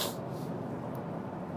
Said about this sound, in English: Pardon my sniffles.